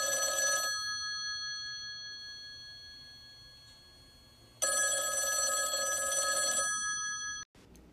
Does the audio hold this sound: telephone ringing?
yes